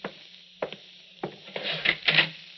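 A door is opened: a few sharp latch clicks spaced apart, then a brief rustling scrape as it swings, with no one speaking.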